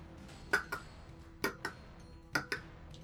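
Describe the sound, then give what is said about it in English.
A voice mimics a giant clock's ticking with crisp mouth clicks in paired tick-tock beats, three pairs evenly spaced about a second apart, fairly loud against a quiet background. “As you're doing all of this, you hear the, there's actually, like, a giant clock ticking at this point. Going...”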